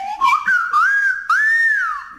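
A person whistles a short tune, clear and fairly loud, the melody gliding up and down across a few phrases with brief breaks between them. No one speaks.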